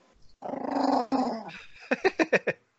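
A dog growls low and steadily for over a second, then lets out a rapid run of five or six short, sharp barks, fairly loud with no talking.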